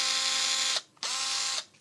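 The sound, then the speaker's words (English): A small powered driver whirs in two steady bursts of under a second each, separated by a brief pause, as one little bolt is run in at the bottom. No one speaks. “No, that just needed one little bolt at the bottom.”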